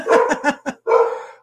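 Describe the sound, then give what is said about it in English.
A dog barks loudly: a quick run of four sharp yelps, then one longer, drawn-out bark, with no other sounds. “So please stop barking.”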